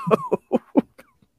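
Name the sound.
sneeze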